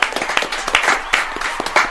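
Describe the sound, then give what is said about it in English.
A small audience claps steadily, a dense patter of sharp hand claps with a few louder slaps standing out, moderately loud and with no talking over it. “Let's clap it up, y'all.”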